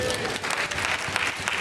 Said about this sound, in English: I think we should clap for her.